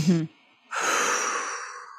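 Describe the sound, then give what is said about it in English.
A brief voiced sound, then a quiet pause before a long, audible cleansing breath, taken in through the nose and pushed out through the mouth, steady and airy like a sigh, fading gently over more than a second. “So there's something called a halo active breath, which is in through the nose and out through the mouth. It's just like a cleansing breath.”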